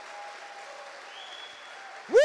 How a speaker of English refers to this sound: Can we just give the biggest, rowdiest, just hand clap for the leaders of this house, Pastor Greg and Susie Williamson? Can we just show how much we love them?